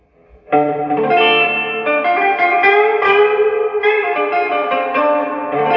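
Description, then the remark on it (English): An electric guitar plays through a Champion amp on its tweed setting, with a warm, slightly gritty, overdriven tone, sustained chords ringing out continuously for several seconds with a touch of reverb and no talking. “And the champion right now is not even on the blackface. It's on a tweed setting.”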